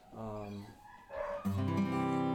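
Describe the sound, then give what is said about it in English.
Dogs bark in loud, drawn-out bursts, three vocal outbursts in quick succession, the last one long and sustained. “Those dogs will be all right.”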